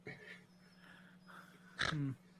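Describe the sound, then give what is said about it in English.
A dog gives one short, loud, sharp yelp near the end, after a stretch of quiet low hum and faint background murmur. “Your poor dog.”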